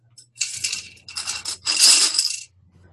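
Dice clatter and rattle in three quick bursts, a bright, clicky jangle of small hard pieces knocking together, with the last burst loudest and longest before it stops.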